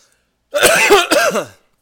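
A harsh, raspy cough in two quick back-to-back bursts, loud, with a throaty, gravelly edge and no talking around it.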